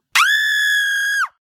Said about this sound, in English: And that is the first time I've enjoyed that scream, because that sound means the show's over. Actually, it means final thoughts / wrap up.